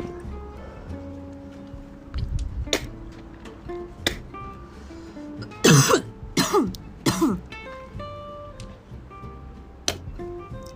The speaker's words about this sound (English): Cough up a lung, …. Cough up a lung.